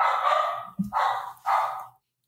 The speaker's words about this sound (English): Like right now, the score to our podcast is that barking. Oh, you can hear that?